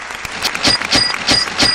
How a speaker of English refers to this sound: I have applause for her.